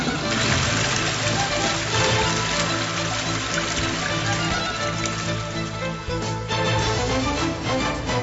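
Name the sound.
toilet flush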